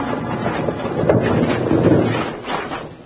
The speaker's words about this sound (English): Just as Bill, Jingles, and Betty climbed over the top of the pile of rocks, they heard a choked-off call from Matt, and a big rock slide cut them off from the rest of the mine.